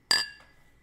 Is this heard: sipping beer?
no